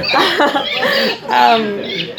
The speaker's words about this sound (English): Well, you're really getting the whole jungle vibe here, the children and the birds.